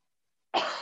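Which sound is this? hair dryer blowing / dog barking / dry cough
dry cough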